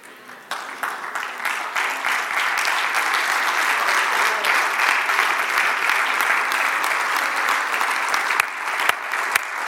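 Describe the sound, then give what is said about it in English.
A standing church audience applauds steadily for about ten seconds, giving the Lord a hand clap, dense overlapping hand claps with a few sharper individual claps standing out, at a fairly loud, even level. “If you can you stand to your feet and can you give the Lord a hand clap?”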